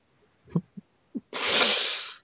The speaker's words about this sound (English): sometimes probably sneeze and just send him flying all over.